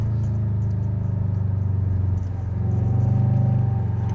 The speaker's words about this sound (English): I'm literally driving behind a box truck on my way to work this morning. I was about to make a turn, so I got to slow down real quick.